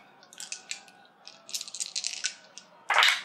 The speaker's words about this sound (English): So roll 3 dice and take your largest dice.